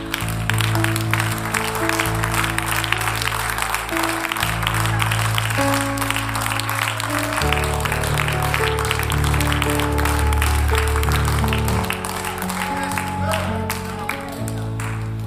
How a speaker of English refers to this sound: In Jesus' name, why don't we clap our hands to him?